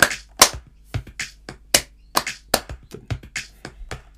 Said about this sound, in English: In this section here, this is like the breakdown section. They've added another clap in the background, a count, like a more to emphasize the beat.